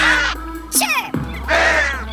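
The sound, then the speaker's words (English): Three harsh, raspy crow-like caws in quick succession, voiced by a person imitating the bird in a call-and-response during a DJ set, loud with brief gaps between the calls. “When I say chirp, you say caw!”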